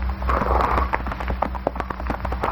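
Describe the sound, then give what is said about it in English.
Horse hooves clip-clop in a steady, uneven patter of sharp knocks as Hoppy and California ride along an old wagon road winding through lonely brush country, over a low constant rumble with no voices. “riding along an old wagon road that winds through the lonely brush country”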